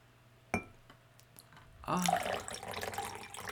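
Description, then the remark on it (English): A single clink, then liquid pours steadily into a glass with a bright, splashing rush that continues to the end, moderately loud. “Like, hearing that pour was pretty nice.”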